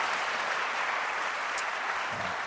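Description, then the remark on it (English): A crowd in Baltimore applauds steadily, a dense, even wash of many hands clapping at constant loudness throughout, with no voices standing out above it. “I am always, y'all didn't clap loud enough on that.”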